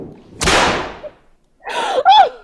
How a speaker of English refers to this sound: She hit me. Hit me with her whip.